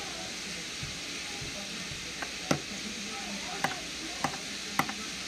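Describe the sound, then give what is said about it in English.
Chicken frying in a pan gives a steady, hissing sizzle, broken by a handful of sharp pops and crackles that spike above the constant bubbling noise. “Hear that chicken in the background.”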